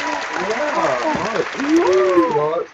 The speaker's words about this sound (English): She's clapping too.